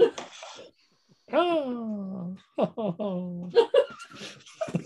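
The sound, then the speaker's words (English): A voice imitates a raven crying: a breathy sound, then two drawn-out wailing cries that slide downward in pitch, followed by short choppy bursts that sound almost like stifled laughter. “What it sounds like when ravens cry.”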